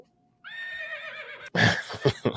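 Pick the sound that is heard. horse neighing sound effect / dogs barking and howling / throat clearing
horse neighing sound effect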